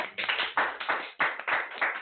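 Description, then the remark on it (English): A short burst of applause in the station, a few people clapping in quick, uneven bursts for about two seconds, fairly loud and with no talking over it. “Can I get a round of applause in the station, please?”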